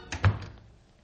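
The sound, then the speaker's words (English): A house door swings closed with a short latch click and a solid, low thud, followed by a brief fading ring. No one speaks. “Yeah, and the door's right over there.”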